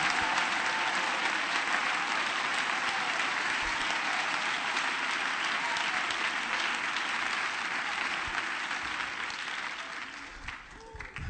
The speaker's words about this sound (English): Let's give the Lord one more hand clap of praise and raise this roof tonight.